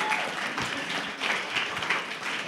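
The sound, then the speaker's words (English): A crowd applauds steadily, dense overlapping claps forming a continuous bright patter with a few sharper peaks, moderately loud throughout, with no talking over it. “Hey, I think that deserves applause, isn't it?”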